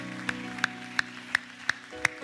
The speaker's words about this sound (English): Could you one more time put your hands together and clap to the Lord?